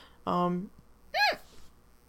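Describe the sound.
A voiced hiccup: a low throaty catch followed about a second later by a sharp, higher-pitched squeak, then quiet.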